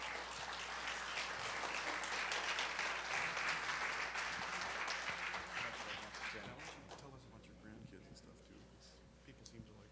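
An audience breaks into sustained applause in the morning to welcome a speaker: a dense crackling wash of many hands clapping that holds steady for several seconds, then thins out and fades, leaving a few scattered claps and faint murmuring.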